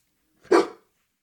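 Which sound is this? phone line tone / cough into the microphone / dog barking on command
dog barking on command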